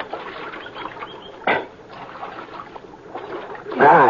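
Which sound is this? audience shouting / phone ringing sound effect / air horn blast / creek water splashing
creek water splashing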